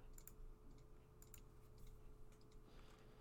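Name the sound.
computer mouse clicking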